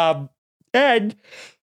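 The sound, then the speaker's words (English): A person yawns: a brief voiced sound, then a longer drawn-out groan with wavering pitch that trails off into a soft, breathy exhale. “I'm yawning.”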